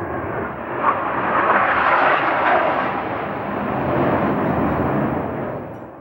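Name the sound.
jet aircraft flying overhead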